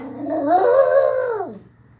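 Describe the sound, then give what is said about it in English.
A dog gives a single drawn-out howl on command, asked to sing, rising and wavering before sliding down and fading, fairly loud with no one talking over it. “Sing for me.”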